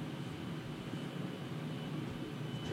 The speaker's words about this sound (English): Just working out and listening to that vacuum cleaner.